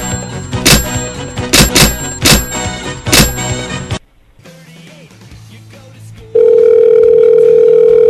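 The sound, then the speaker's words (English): A motel's phone line clicks and clatters through a few seconds of noisy bursts, goes quiet with faint line hiss, then a loud, steady telephone tone from the motel phone system starts and holds to the end. “They took their phone system off the hook or something.”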